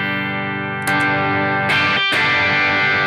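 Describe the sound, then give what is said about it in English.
Electric guitar played through the boost setting of a pedal in front of a plexi amp, ringing out loud, slightly driven chords that sustain and are restruck three times, with no voices. “What does boost sound like?”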